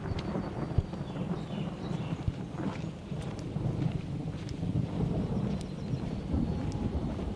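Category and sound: nature, thunder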